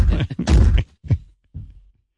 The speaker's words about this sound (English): This can't be. I'm banging my head into the wall.